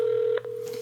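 A phone rings with a steady electronic tone that holds, breaks off for an instant, then resumes at the same pitch. It is clear and fairly loud, with no talking.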